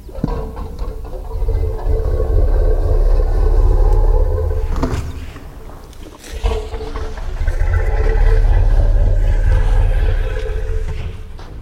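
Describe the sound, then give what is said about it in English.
A deep, throbbing elephant musth rumble, loud and sustained, in two long low pulses separated by a brief dip, with a growling, harmonic texture and no talking. “One of them is the must rumble.”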